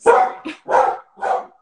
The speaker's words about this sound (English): Sorry. Sorry, Cooper's barking.